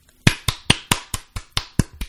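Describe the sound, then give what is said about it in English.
A small group claps briefly: about nine sharp, light claps in a quick, fairly even rhythm over two seconds, each snapping crisply and fading fast, with no talking. “You're going to get a series of tiny little claps in the monitor.”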